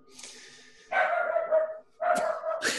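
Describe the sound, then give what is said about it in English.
A dog barks loudly, two drawn-out, whining barks separated by a brief pause, with a softer whimpering sound just before the first. “Right on cue. Great timing, dog.”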